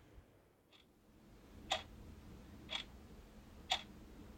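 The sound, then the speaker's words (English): A clock ticks: crisp, evenly spaced clicks about a second apart, one faint tick followed by three clearer ones against low background hiss. Nobody speaks. “With clocks in particular, I think about how there's a reassurance to them from their timekeeping.”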